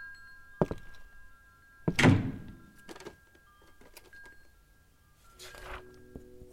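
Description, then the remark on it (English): A door upstairs bangs open with a heavy thunk, followed by scraping and clattering movement, then a softer knock or shuffle a few seconds later. “Just as I was about to go, a door flew open upstairs.”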